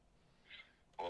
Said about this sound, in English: All right, folks. The phone is ringing.